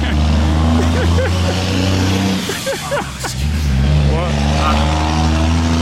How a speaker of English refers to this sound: Well, one more after this construction truck.